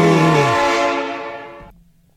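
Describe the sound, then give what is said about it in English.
A single loud, sustained train horn blast rings out for under two seconds with a rich, buzzy chord, then cuts off abruptly into quiet. No voices accompany it. “Also, I'm 100% on the train. Arizona, here we come! Chugga chugga, choo choo.”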